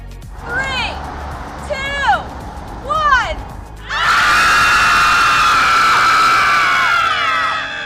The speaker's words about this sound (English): So on frosty mornings, these women are gathering together to scream publicly.